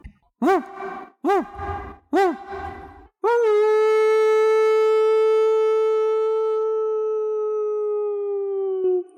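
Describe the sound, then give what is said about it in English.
Dogs howling outside in the dark at night: three short rising-and-falling yowls give way to one long, steady, drawn-out howl that slowly fades, loud with no one speaking. “The dogs are disturbed by an unnatural presence.”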